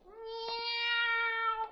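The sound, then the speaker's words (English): A single long, drawn-out cat meow, steady and fairly loud, holding one pitch for nearly two seconds before cutting off, with no other sounds around it. “It's only 5 o'clock. Hardly dusk yet. Are the black cats out already?”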